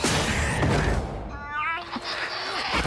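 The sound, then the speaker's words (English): A cat lets out a single drawn-out meow, clear, over a steady rushing background noise with no talking. “That cat is so weird.”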